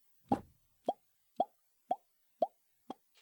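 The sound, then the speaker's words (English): A series of short, hollow pops, like little bubbles popping in the air, described in a tabletop role-playing game as conjured black bears appearing: seven in quick succession at an even rhythm, each a crisp burst of moderate loudness, with the final one softer; no talking. “So as an elephant, all of you actually hear 8 little pops.”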